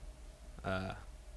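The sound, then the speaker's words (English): A single short meow from a cat named Felice, fairly clear, rising and falling in pitch over under half a second against a quiet, faint hum. The cat is hunting a mouse in an apartment. “My cat Felice wants to join in.”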